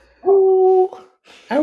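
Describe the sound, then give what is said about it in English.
A voice imitates an eager hound dog waiting at the bowl for kibble, giving a loud, drawn-out whining whimper, then a brief pause before a second rising whine starts. There is no other talk. “Yeah, dude, I'm literally like a hound dog at the bowl waiting for them to the owner to pour the kibble in.”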